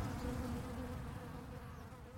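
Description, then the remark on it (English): A happy honeybee hive hums gently and steadily, a soft, low droning buzz of many bees that holds an even level throughout, with no voices. “Not the gentle humming. That's more of a happy sound, yes.”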